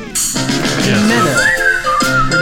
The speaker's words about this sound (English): This is the theme to Gary Show. The opening theme to Gary Show. This is the music that you hear as you watch the credits. We're almost to the part of where I start to whistle.